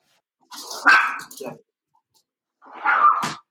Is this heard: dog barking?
yes